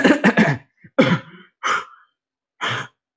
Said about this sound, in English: I was confused about all the coughing, but now it makes sense. General Grievous and Zare Leonis.